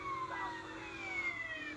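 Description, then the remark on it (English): A siren wails continuously, its high tone sliding slowly downward in pitch, loud and steady throughout with no voices over it. “Turn off the siren.”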